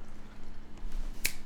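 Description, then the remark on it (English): A single sharp finger snap cracks out about a second in, crisp and bright against a low, steady background hum, with no talking. “Finger snap, point.”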